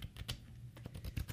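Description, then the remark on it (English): Quiet handling of a custom-made, half-size paper legal pad with a small Drift logo on the corner as it is handed over: a quick run of crisp taps and papery rustles, several short bursts in an irregular rhythm with a low hum beneath. “I handed a custom made here, Drift, kind of junior size legal pad.”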